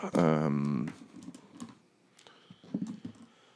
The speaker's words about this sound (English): Looking for dice as the NPCs fight.